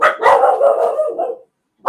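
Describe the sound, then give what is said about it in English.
Dogs barking in a fairly loud, continuous burst of overlapping yaps for over a second, then a brief silence before another bark starts. “Shut up, dogs.”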